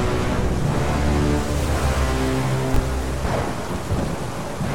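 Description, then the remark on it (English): A loud, continuous roar of violent sea waves crashing outside a bay, with a deep rumbling low end and dense hiss throughout, overwhelming, with no voices. “the sea outside the bay exploded in violence.”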